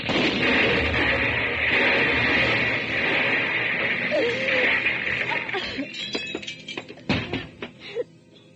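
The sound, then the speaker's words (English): An accidental explosion: a loud, sustained roaring blast fills the first few seconds, then breaks up into scattered cracks and crashes of falling debris before dying away. No one speaks. “There's been an accident, an explosion.”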